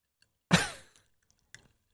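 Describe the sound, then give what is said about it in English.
A short burst of water bubbling that gurgles loudly and fades over about half a second, followed a moment later by a briefer, softer gurgle. No one speaks. “I like hearing your bubbles.”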